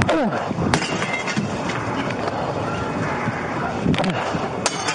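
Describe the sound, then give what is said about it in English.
Body cam footage of a police officer in Mesa, Arizona, throwing rocks to break open an apartment window to reach two trapped children: several sharp impacts of rocks striking and cracking the glass ring out over a dense, noisy background with muffled voices and commotion throughout. “Body cam footage shows the police officer in Mesa, Arizona, throwing rocks to break open the window.”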